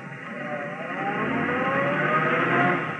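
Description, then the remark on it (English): A car engine hums steadily as the vehicle drives along a city street, its pitch rising gradually, loud with a continuous rumble and no voices. “By the time Sally Marlin would make it to the lobby in the street, I ought to be ready for her, in my car halfway down the block.”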